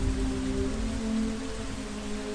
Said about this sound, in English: And then the rains came down.